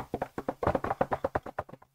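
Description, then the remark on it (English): A quick, steady run of about a dozen light knocks on a wooden surface, fairly even in loudness, with no voices. “Is, well, you know, knock on wood.”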